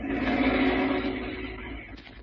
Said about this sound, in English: Even inside the cottage, you can hear the distant boom of the waves and the low moan of the wind along the dunes.